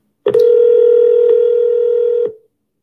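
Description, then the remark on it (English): A telephone line hums with a steady, loud dial tone as a call is placed during a weekly show. The tone holds for about two seconds and then cuts off abruptly, with no voices or other sounds around it. “Let's see if we can get Leilani on the phone here.”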